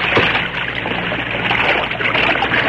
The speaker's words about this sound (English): I'm riding this team down into the water, and we ain't stopping for bumps. Now, get set to travel, you ponies.